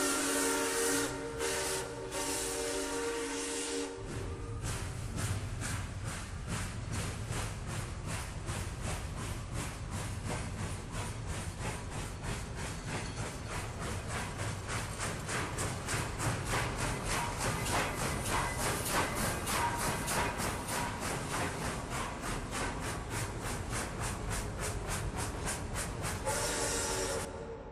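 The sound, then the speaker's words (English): A steam train sounds a long, loud whistle, then chugs steadily onward with a rapid, rhythmic chuffing that continues loud throughout, with no voices. “Galatz is 38 hours from here, and the first train for Galatz leaves at 6:30 tomorrow morning.”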